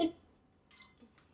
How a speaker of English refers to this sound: Drinking water now.